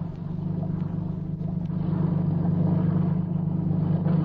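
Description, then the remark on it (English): A motorboat engine drones steadily with a deep, throbbing hum at night, growing slightly louder partway through as the boat comes alongside. No voices are heard. “And just in case you might start talking when that motorboat comes alongside, I'll put this gag in your mouth.”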